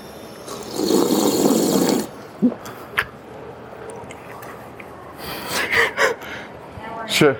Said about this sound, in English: I wonder if they're going to hear me drink water.